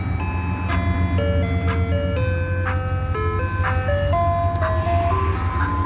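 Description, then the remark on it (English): An ice cream truck's tinkly jingle plays a stepping, music-box melody over the steady low rumble of an idling engine, continuous with no talking. “Alrighty, that's surveillance in an ice cream truck.”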